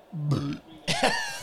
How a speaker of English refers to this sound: Why did you spell that burp out as you did it? Onomatopoeia. Like, what's the, like the wild card insert burp?